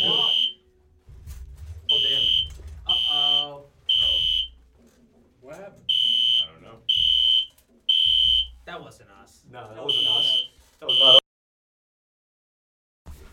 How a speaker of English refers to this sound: We had a brief intermission there. We literally had a fucking fire drill in the middle of the podcast. I haven't heard that shit since high school.